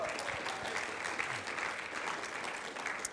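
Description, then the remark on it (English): A crowd claps steadily at a church in a dense, continuous wash of applause that holds at an even level for about three seconds, with no pauses or individual voices standing out. “Can we give it up for Michele?”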